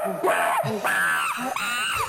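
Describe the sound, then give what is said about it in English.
A person imitates a monkey with a run of shrill, rising-and-falling screeches, loud, several short squealing bursts back to back over about two seconds. “I don't know how monkey, they like scream a little bit. He had like little screams.”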